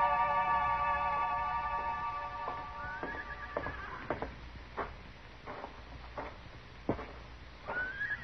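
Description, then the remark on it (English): A horse whinnies, a long wavering neigh, followed by a scattering of irregular hollow clops and knocks like hooves shifting on a stable floor, at a corral. “Where did you leave your horses, Jesse?”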